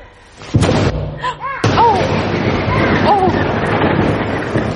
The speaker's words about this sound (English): See, even the disciples of Jesus were afraid of thunderstorms.